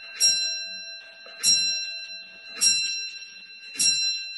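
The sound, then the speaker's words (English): A clock chimes four times at a steady, unhurried pace, each bright metallic strike ringing out with a long sustained tone that carries into the next. “Here we go. Here comes the clock.”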